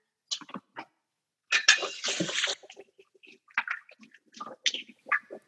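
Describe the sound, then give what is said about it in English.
Water runs from a tap in a short, fairly loud burst of about a second, surrounded by small splashes and scattered clinks as hands are rinsed at a sink after mixing meat by hand. “I'm going to do a quick little hand wash.”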